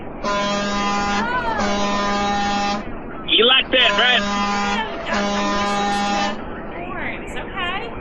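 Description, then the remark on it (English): A trucker sounds a truck horn in long, steady, buzzy blasts, a pair before and a pair after a brief spoken remark. The tone is loud and low-pitched, with a voice talking between the blasts. “Hold on, you gotta hear the horn.”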